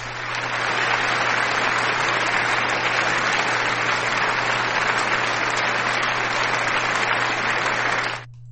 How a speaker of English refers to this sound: Some of you did get it right, though. Let me play your claps.